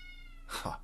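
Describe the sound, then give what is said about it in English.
A cat lets out one short meow, sudden and slightly rough, over a quiet background with a faint steady hum and no one talking. “Be quiet, cat.”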